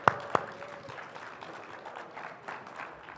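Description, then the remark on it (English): A church audience at Christ's Way applauds the worship team steadily, dense overlapping claps, with a couple of sharper loud claps or whoops right at the start before it settles into even, moderate clapping. “A round of applause for the worship team and what they did in Act One.”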